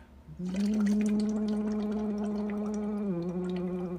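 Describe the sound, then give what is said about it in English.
Steady bubbling as someone blows through a straw into a cup holding about a quarter cup of water, a sustained hummed tone underneath, lasting several seconds with a slight pitch drop near the end. “I'm blowing into a cup with about a quarter cup of water and a straw.”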